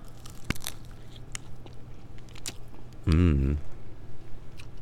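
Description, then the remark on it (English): A few sharp crunches as someone bites into a strawberry crunch treat coated in white chocolate and rolled in strawberry crunch topping, with softer chewing between them, followed by a brief voiced murmur of appreciation. “So you get that nice crisp, like crack through the chocolate and the nice delicate strawberry underneath.”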